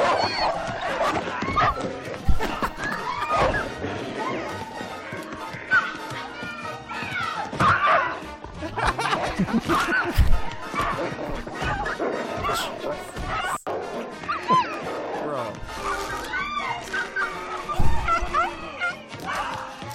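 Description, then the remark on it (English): A dog barks and yips repeatedly amid a busy, chaotic mix of animal cries and clattering, fairly loud, with voices underneath throughout. “That's a real dog”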